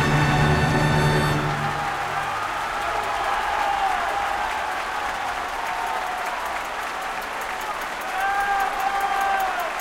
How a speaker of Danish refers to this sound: Det er virkelig sødt, hvordan man bare kan mærke, at sådan på et eller andet tidspunkt, så må publikummet bare sådan briste i jubel, eller sådan, bare sådan, de bare sådan... De kunne ikke holde det tilbage.